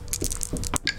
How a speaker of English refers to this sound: Way too many dice in the dice tray. Oh, goodness gracious. That was a lot of dice.